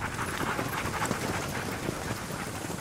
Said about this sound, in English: One of the marshals checks the temperature. It's 27 degrees below. From the woods at the side of the clearing we're in, a team of dogs appears. They're pulling a small, huddled figure in a red jacket on a sled behind them.